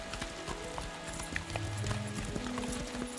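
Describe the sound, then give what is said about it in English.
Several horses gallop toward the drawbridge of the Tower of London, hooves clip-clopping in quick, overlapping beats, a steady galloping rhythm with a low rumble underneath and no voices. “The horses galloped toward the drawbridge where a dozen metropolitan police carriages were already parked.”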